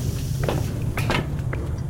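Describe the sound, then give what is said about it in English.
A small metal maintenance hatch among gears and piping is opened with a few sharp clanks and a brief scraping rattle, over a steady low mechanical hum. “This hatch is much smaller, perhaps for maintenance crews.”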